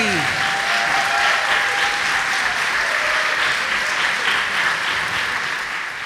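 A crowd applauds steadily, a dense, even wash of clapping that holds at a loud level for several seconds, with a few faint whoops or whistles near the start, then eases slightly at the end.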